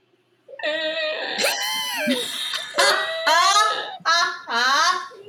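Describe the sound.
A person imitates the obstructed breathing of a cat that had something deviated inside. The imitation is about five loud, strained, wheezy vocal squeaks that slide up and down in pitch, coming in quick uneven bursts with no words.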